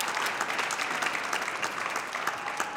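A crowd claps steadily throughout, a dense, even wash of many hands with no pauses or swells, fairly loud and continuous with no voices on top, applauding an intern invited up onto the stage.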